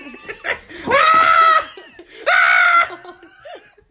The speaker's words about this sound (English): Stop yelling. I just screamed.